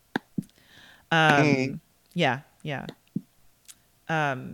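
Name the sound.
computer mouse clicking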